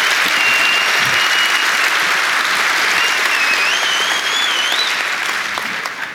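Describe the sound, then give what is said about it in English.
Sustained, loud applause from a large audience for historian Anthony Beaver, a dense wash of clapping that stays steady throughout, with a couple of faint whistles rising above it near the middle. “Ladies and gentlemen, before we start, one more massive round of applause for Anthony Beaver.”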